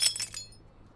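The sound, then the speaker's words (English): A drinking glass shatters in a bar, a bright crash followed by two quick tinkling bursts of falling pieces that ring briefly before fading into near silence. “Oops. I didn't mean your glass.”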